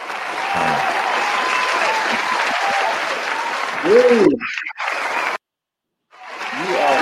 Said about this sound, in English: That's enough applause. Thank you. We get it.